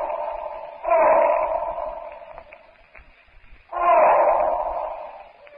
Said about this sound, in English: He rises to his feet, cups his hands to his mouth. Tarzan's call to Tantor, his friend, echoes and re-echoes through the jungle depth.